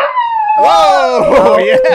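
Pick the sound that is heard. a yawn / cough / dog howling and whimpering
dog howling and whimpering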